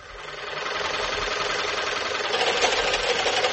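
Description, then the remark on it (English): An old, malfunctioning sewing machine, used while altering a dress, runs roughly, giving off a continuous rattling, grinding whir that holds steady and grows slightly louder, with no voices. “This is trouble enough with a good sewing machine. But listen to this.”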